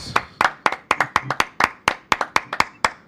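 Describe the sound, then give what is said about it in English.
A burst of real live hand clapping for a music track, roughly fifteen sharp, bright claps in about three seconds, played in a loose, slightly uneven rhythm with no voices. “We need a live hand clap right now.”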